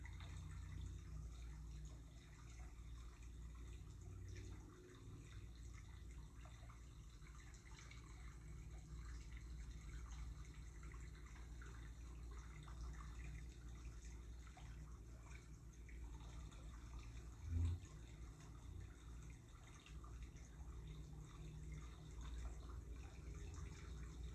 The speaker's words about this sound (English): It knows how to find the way. The same way your brook offers constancy, refreshing your energy with its calming movements.